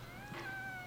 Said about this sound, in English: Whoa. Something popped up. That was a cat meow.